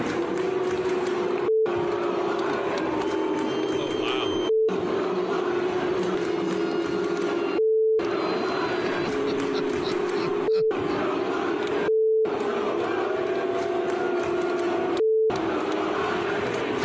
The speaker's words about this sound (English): Now I've had to beep this out because a very popular chant started to break out.